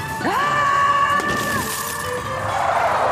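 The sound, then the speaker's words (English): A makeshift glass vehicle shatters with a sharp crash after being bumped by another vehicle, followed by bright ringing tones and scattered tinkling fragments that fade over about three seconds. “Careful, this thing's made of glass! Unfortunately, many of the makeshift transports can't survive being bumped.”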